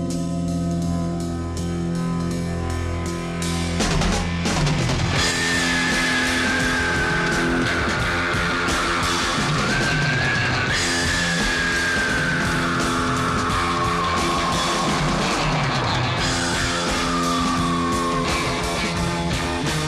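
Loud, dense rock music from a film fills the whole stretch, with a high wailing, screaming line sliding up and down over it and heavy crashing bursts of things exploding breaking in a few times.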